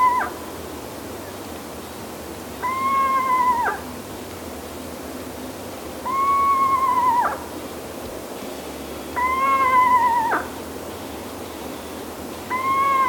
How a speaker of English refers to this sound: when I do owl walks in the woods and we listen for a screech owl, people have no idea the call of a screech owl. It sounds nothing like a screech. It sounds more like a horse, like a little winning horse or something.